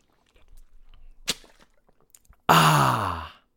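Soft gulping and swallowing sounds with a brief click, then a loud, satisfied "ahh" exhale as someone drinks water from a brand new water bottle from judoinside.com.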